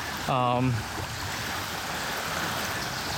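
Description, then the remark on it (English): Small waves lap and wash steadily against the shore of a lakeside beach on a sunny, warm morning around 8:30, a continuous soft rushing, with a brief voice sounding near the start. “I don't mind waking up on this every morning.”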